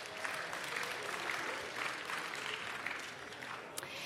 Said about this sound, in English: So give yourselves a round of applause for showing up.